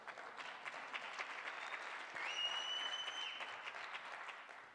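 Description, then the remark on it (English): Steady crowd applause, a dense wash of many hands clapping at an even level throughout, with a high, sustained whistle cutting through midway for about a second. “For all the men, you should be clapping your hands, not the women.”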